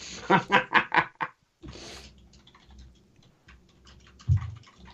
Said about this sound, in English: You're going to hear me typing, folks. You're going to have to deal with it. Just part of the live.